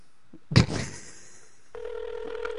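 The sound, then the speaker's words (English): A sharp click and brief rumble, then a steady electronic ringback tone starts and hums on continuously, like a phone line ringing on an outgoing call, clear with no talking. “She probably don't have her phone on.”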